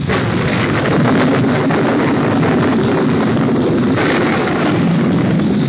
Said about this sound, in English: Listen to that thunder. It seems to be staying close to us, too. Storm must be right over our heads.